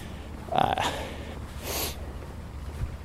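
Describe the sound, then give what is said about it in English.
A dog sniffs and snorts right up against the microphone: a close, breathy snuffle with a faint whine, then a second short sniff about a second later, with no talking. “Another curious dog sniffing out my microphone.”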